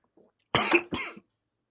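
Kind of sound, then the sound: human body sound, man coughing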